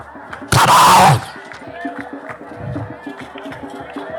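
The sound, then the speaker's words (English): An audience bursts into loud, dense clapping mixed with shouts for about half a second, then it drops back to a softer, busy background of crowd noise. “If I were you, as you are clapping your hands, that door should be open.”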